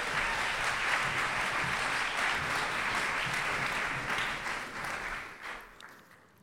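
A roomful of people applauds steadily, dense overlapping claps at full strength for several seconds before the clapping thins and fades out near the end.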